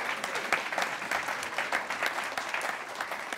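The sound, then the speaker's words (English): Sustained applause from a room of fully vaccinated audience members at the City Club Friday Forum, applauding themselves: a dense, steady patter of many hands clapping at once, fairly loud and even throughout with no voices standing out. “Please give yourselves a round of applause for that.”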